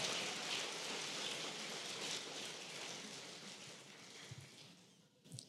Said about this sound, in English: Let's keep the round of applause going as they take their seats.